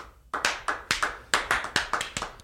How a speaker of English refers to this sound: It's like yeah, it's like the clap starts slow. Yeah. And it's one person. Right. But then eventually yeah. it's everybody starts clapping. Right. They're clapping together.